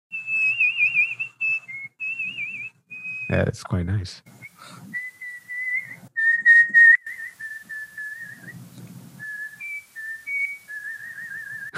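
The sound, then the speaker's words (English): A person whistles a lilting melody, clear pure notes gliding and wavering for about twelve seconds, briefly broken by a short burst of noise and a few quiet spoken words. “I am one of the world's best whistlers. Oh, nice. Can we get a little whistle?”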